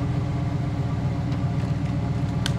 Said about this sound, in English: Kill the engine.